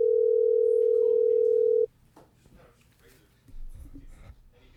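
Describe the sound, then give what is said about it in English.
A telephone ringback tone sounds while calling someone's mother, a single loud, steady burst for about two seconds, then cuts off, leaving faint background voices and noise. “Is it ringing? Yeah.”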